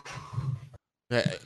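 A sleeping person snores: two rough, rumbling breaths separated by a short silent pause, each with a low buzzy rattle and breathy hiss, fairly loud and with no talking.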